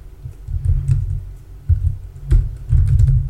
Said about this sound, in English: I can hear you typing furiously.